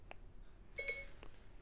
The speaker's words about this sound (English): Oh yeah, no. Somehow activated my phone. I don't know how. You know why? My iPhone recently updated, and so I'd imagine that probably reset my Siri settings.